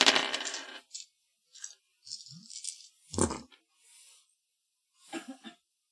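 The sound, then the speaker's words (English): Three dice clatter and rattle in several irregular bursts, with a heavier knock partway through and a last short tumble near the end. No one speaks. “All right, he rolled 3 of his dice, and he got 2 fours.”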